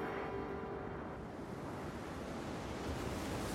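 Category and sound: nature, stormy ocean waves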